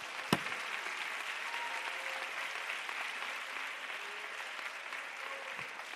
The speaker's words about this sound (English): Would you clap uproariously for just a moment? If you have any energy left.